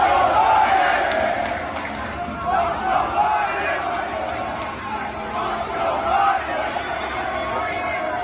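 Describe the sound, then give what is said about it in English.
A large crowd chants "Let's go, Biden" in unison at Trump, a loud, steady roar of many voices with rhythmic swells repeating every couple of seconds, no single voice standing out. “Here's a video taken from the crowd, and everybody's just chanting, "Let's go, Biden."”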